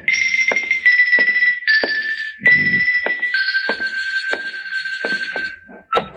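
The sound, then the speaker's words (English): Steady, insistent knocking on a door, about ten evenly spaced thuds, heard beneath a loud, continuous buzzing ring that starts and stops throughout. No one speaks. “Come on, open up, will you? I got a message for you. Come on, answer the door. Anybody home?”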